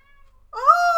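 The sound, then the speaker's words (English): A single clear meow from a cat named Max, starting abruptly halfway through with a rising then sustained tonal cry; only faint tones precede it, with no talking. “We're going to have cats on the podcast.”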